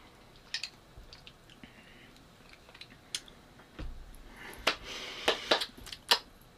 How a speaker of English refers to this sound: It's my fireside cocktail. So it's like a blood orange, kind of a spicy blood orange cranberry bevy. I'm gonna stir it up. You know how I stir cocktails sometimes is blow bubbles into them. Okay, here we go.